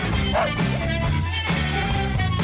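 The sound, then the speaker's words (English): A dog named Butch, the show's executive producer, barks and yips a few times, loud, layered over a dense, steady musical backing of the My Buddy Butch Show intro. “the dog behind the man, our executive producer, and everyone's buddy, Butch.”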